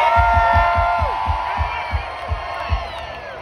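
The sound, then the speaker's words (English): A large festival crowd screams and cheers continuously for a band on a tour bus, with whoops and shouts layered into a dense roar, while a steady, booming low thump pulses underneath at a regular beat. “got some friends over there at a tour bus who would love to hear you guys scream.”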